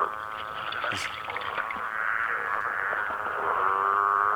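A dense chorus of growling grass frogs, an endangered species: overlapping, droning, harmonic calls that run unbroken for several seconds, growing slightly louder toward the end, with a brief sharp click early on.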